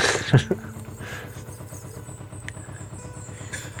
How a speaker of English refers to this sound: You go under like motorways and all these cars chugging to work, and we're just pootling along to our next destination, not caring the world.